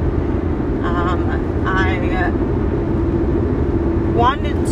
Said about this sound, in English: We are in the car right now recording live, so if you hear any extra background noise, just know that that is why.